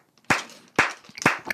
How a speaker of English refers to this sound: I'm just doing the clapping